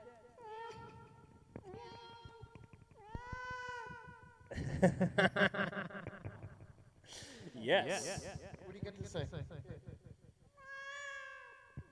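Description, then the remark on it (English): A cat on a computer meows several times, loud, with drawn-out, tonal cries at the start, in the middle and near the end, while a person talks between and over them. “Off the computer, you cat.”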